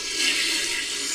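A toilet flushing, with a steady rush of hissing water that stays even for about a second. It is clear, with no voices.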